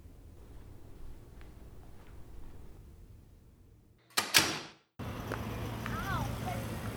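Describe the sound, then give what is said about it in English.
Over a low, steady room hum, a door opens with a short, sharp clatter of the latch and frame. A brief hush follows, then livelier, brighter background noise from beyond the door. “Come out here and open your door.”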